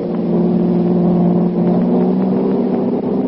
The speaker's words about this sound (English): Out of the carnival grounds dash the Blue Beetle, just in time to see the two thugs drive off in a long sedan. Jumping into his own car, the Blue Beetle gave chase until out on the river road.